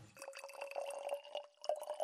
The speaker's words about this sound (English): will you pour some water into this first jug?